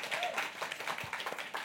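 An audience claps steadily, a dense patter of many hands at a moderate level with no voices standing out.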